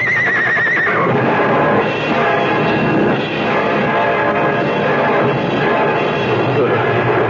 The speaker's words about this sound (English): The two runaway horses. The horses are hurt.